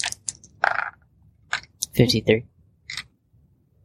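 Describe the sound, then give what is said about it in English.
Two ten-sided dice are rolled one after the other for a D100 roll, clattering and tumbling across a hard surface in a few quick bursts of sharp clicks and rattles, with a short pause between rolls and brief voices. “One 10-sided dice and then another.”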